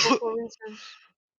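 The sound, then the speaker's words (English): A sharp cough sounds close to the microphone, followed by a shorter rough, breathy burst like a second cough or throat clearing, then quiet. “Why you got a cough in the microphone?”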